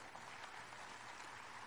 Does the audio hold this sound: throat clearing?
no